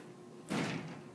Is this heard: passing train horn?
no